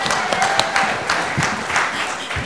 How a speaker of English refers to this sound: Let's give these men a huge clap.